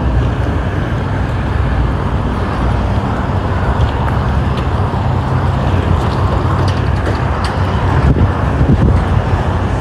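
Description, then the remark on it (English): A car engine runs steadily, a loud, continuous low rumble that stays unchanging for the whole stretch, with a faint windy hiss on top and no one talking. “Gee, those two engines sound exactly the same. What if it's the same kind of car?”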